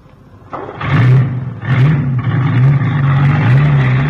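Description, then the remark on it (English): A truck engine, started with a key, turns over and catches, then settles into a loud, steady rumble with wavering revs as Professor Tobin from the London Zoo drives it away with the animals, staying prominent throughout with no voices. “Hey, where's he going with the truck?”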